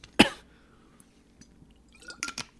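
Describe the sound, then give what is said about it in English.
A sharp knock, like a cup being picked up, is followed by quiet pauses, then a short cluster of wet swallowing and sipping sounds as someone drinks water. No one speaks. “Let me get some water.”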